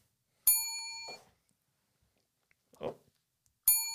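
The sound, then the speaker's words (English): A bright, ringing bell is struck twice, about three seconds apart, each tone sustaining briefly. Short rustling noises fall in the gap between the rings, and no one speaks. “you got to ring the bell for Katie”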